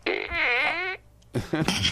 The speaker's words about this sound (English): I found Johnny's fart gun, and so I had to use it.